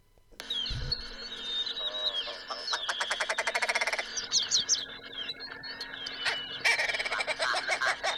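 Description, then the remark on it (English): Willow ptarmigan clucking calls, made by males to attract females: nasal, barky notes mixed with fast rattling bursts and higher chirps, loud, repeating steadily for several seconds with no voices. “Males of this bird species make nasal barky notes and rattles as part of their clucking calls to attract females.”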